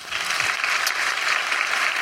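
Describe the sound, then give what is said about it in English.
Steady, dense applause from an audience, a continuous wash of many hands clapping at an even, fairly loud level throughout, with no voices heard. “This is the credibility I have now from applause.”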